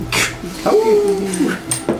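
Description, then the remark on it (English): A voice imitates a wolf: a sharp bark, then a drawn-out whimpering whine, then two more quick barks, with no other talking. “Then he turns into a wolf, so that you can't argue with him anymore.”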